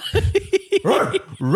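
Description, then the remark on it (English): A person imitates a dog barking with four quick, evenly spaced yaps, followed by a longer drawn-out, wolf-like vocal howl, fairly loud. “No, there's got to be a different bark.”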